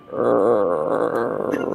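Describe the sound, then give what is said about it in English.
A person growls low in the throat like an animal, a steady rough rumble held for almost two seconds without any words. “like, there's just this low rumble in his throat.”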